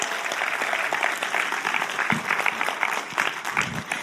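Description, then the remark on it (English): A church audience at a morning service applauds steadily to honour church members, dense overlapping claps forming a continuous, fairly loud wash of sound that holds for several seconds without pause, with no voices standing out. “Why don't we give them a round of applause this morning?”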